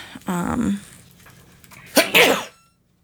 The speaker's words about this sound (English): It sounded like whoever that was just sneezed.